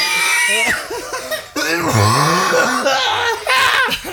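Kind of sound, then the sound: human body sound, cough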